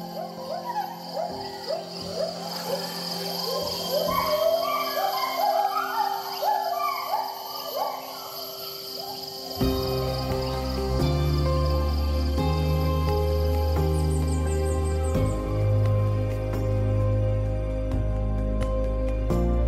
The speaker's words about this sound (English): If Topher White has his way, future generations will be able to hear the fulsome songs of gibbons echo through healthy forests in Borneo, and not just in speakers and headphones.